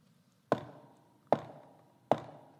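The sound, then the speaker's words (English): Three firm knocks on a door, evenly spaced with short pauses between, each a sharp rap that fades quickly. “I'm not going anywhere right now, but I stand here and knock.”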